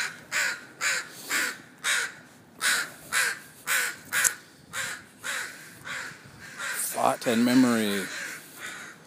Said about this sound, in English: And then, oh, come on, guys, I'm trying to record here. Thank you. The crows get protective. Because, like, say, they start nesting, you know, there's nests in these trees.